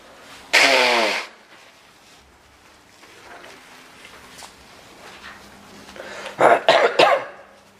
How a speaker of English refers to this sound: I'm going to blow my nose.